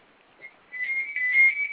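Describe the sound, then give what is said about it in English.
A phone rings with a high, steady electronic tone that warbles slightly. After a brief blip it holds continuously at moderate loudness, with no one talking over it. “My phone is ringing.”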